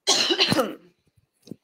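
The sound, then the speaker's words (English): A single loud cough bursts out with a harsh, raspy texture, followed by a brief pause and a faint second throat noise, like a small cough or throat clear. “Snowflakes who have to cough sometimes.”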